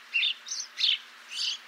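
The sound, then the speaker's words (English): Several male house sparrows facing off chirp in a quick, uneven series of four bright, bursty calls, fairly soft, with no talking and only a faint low hum beneath. “Other males soon join in, their chirping growing ever louder and faster as they face off.”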